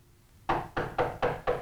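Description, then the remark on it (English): Five firm, evenly spaced knocks on a man's bedroom door ring out in quick succession after a brief quiet pause, fairly loud with no talking. “There's a knock on his door.”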